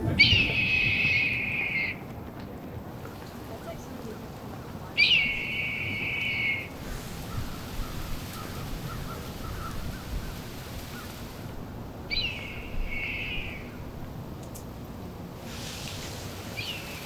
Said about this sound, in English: You've been listening to a hawk over town on a fall day. I think it's a red tail, but if you're a bird person, feel free to correct me.